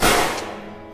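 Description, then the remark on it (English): A single loud rifle gunshot, fired by an animal control officer through a door crack at a dog named Rex on a porch: a sharp, full-bodied crack that hits at once, then a long ringing tail that slowly fades over the following second. No voices are heard. “And that's when I noticed he had a rifle. He poked it through the door crack and fired.”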